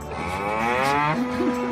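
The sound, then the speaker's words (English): A single long cow moo, loud, with a rich harmonic drone that bends in pitch and trails off after under two seconds, with no voices. “All of a sudden, you walk up on the cow,”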